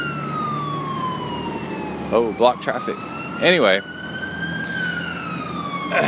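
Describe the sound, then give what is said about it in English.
An emergency vehicle siren wails steadily through the whole stretch, its pitch sliding slowly down and then back up as it passes, fairly loud, with a man briefly talking over it. “here's your siren.”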